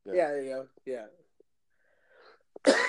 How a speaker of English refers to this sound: Excuse me, damn cough.